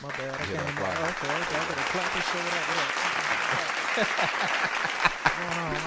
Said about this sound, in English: Clap it up.